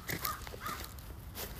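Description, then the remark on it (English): A raven gives a few harsh, croaking caws in quick succession over a low outdoor rumble with faint footsteps, heard during a walk in a very cold place. “Oh my gosh, that stupid Raven Pro thing.”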